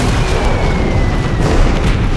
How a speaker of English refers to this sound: As the Blenheim's bombs started to rain down on the airfield.